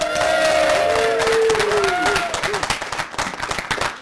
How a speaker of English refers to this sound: This is a live recording from CF Objective ANZ Plus Flex. Crowd, could you please make some noise?